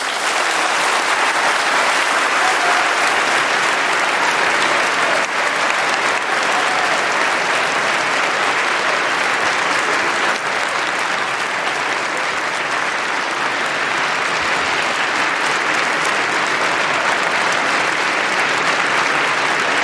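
Sustained, loud applause and a standing ovation from a large debate audience for Anne Applebaum after her speech, a dense steady wash of clapping that holds at full strength for about twenty seconds without letting up.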